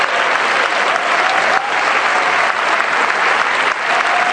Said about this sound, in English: Clap your hands and give the Lord praise.